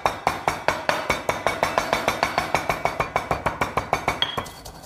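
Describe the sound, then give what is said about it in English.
A pestle pounds herbs in a hard mortar with quick, steady strikes, about twenty sharp clinking knocks in a fast even rhythm, fairly loud, with no talking. “Then we go into the bashing.”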